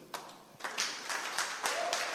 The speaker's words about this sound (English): Oh, the Christians are clapping. The Christians are clapping. I didn't ask you to clap. So if you are clapping, clap well. The Christians are clapping.